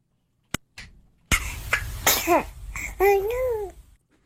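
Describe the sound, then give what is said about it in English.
In a viral clip, a baby gives a couple of quick, sharp sneezes, then lets out a small sing-song vocalization that sounds like a dismayed "oh no," clear with no other talk around it. “Yes, that is a baby sneezing and then saying, oh no.”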